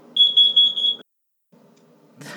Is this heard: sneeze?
no